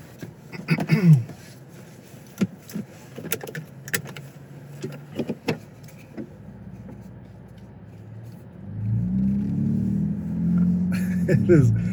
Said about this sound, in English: The exhaust is pretty, it's pretty cool having it that much. You just hear it that much more. It does sound like if you could figure out how to get that exhaust note, that'd be pretty amazing on yours.